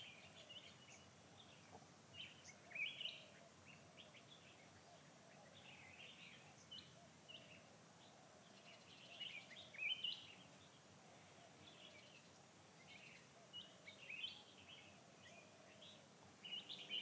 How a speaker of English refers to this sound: There are natural sounds. The voices of animals and insects, birds.